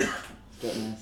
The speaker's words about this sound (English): I need to cough. Feel free. That's all right. That's something my throat there. We'll cut it.